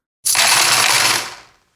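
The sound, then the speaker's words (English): A burst of coins clattering and jingling together for about a second, bright and metallic, then the rattle thins out and fades. No voices. “Coins are a type of money.”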